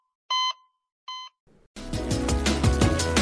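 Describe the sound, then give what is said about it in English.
Two short, bright electronic beeps a moment apart, followed by a brief crackle and then a loud, dense burst of music-like sound taking over. “After all, it's not that first beep we're concerned about. It's this one.”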